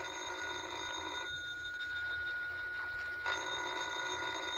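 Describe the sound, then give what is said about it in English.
A telephone bell rings loudly in two bursts of shrill, continuous ringing separated by a brief pause, with no one speaking. “Well, ain't you going to answer the phone?”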